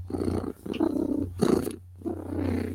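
A female cat purrs in steady, rumbling cycles, each breath in and out making a low vibrating drone with brief pauses between.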